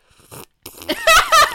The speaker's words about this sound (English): Is that nice? Wait, let me slurp my...